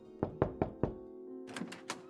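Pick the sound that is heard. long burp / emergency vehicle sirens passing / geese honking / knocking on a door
knocking on a door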